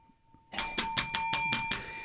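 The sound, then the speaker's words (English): A bright bicycle-style bell rings in a quick run of about seven metallic dings, loud, with a shimmering ring carrying between strikes and no voices. “I don't think you can give a bell before you tell us why.”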